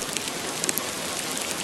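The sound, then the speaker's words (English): Steady rain patters down in a dense, hissing wash, with scattered sharper drops ticking against a surface. No voices are heard. “During the fall and winter seasons, it rains a lot in my country.”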